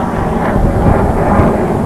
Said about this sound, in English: Oh, that's a loud airplane. Oh, actually, those are fighter jets. Those aren't airplanes. Jeez. Those are fighter jets. That's why they're so loud.